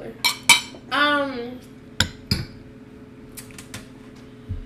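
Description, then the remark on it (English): Glasses clink together in a toast, a few bright, ringing taps in two quick pairs, with a short voiced sound between them over a quiet hum. “If you know that story... Clink.”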